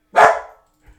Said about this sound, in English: Dogs are going to start barking. Oh, my God. It's happening. It's happening. Here we go.